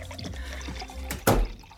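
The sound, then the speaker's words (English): A drink is poured from a crystal decanter on a bookshelf, a soft liquid trickle followed by a sharp glassy clink, fairly quiet over a low background hum. “I get up and pour myself a drink from the crystal decanter on the bookshelf.”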